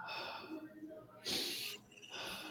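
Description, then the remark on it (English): A forceful breath drawn in through the nose, one sharp airy rush lasting about half a second, framed by quieter breathy sounds before and after. “Nasal breathing, when you breathe, basically it's just breathing through your nose.”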